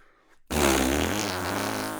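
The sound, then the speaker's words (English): After a brief near-silent pause, a person blows one loud, sustained buzzing raspberry, imitating a fart. It holds steady for about a second and a half with no talking. “Give me a better fart again.”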